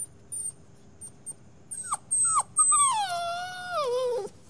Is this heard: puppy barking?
yes